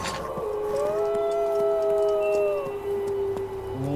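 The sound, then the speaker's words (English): A long, drawn-out wolf howl holds a steady wavering pitch for several seconds, with a second overlapping howl briefly joining, over a low constant background rumble and no talking. “It sounded like a wolf. Oh. You hear it again, a long howl.”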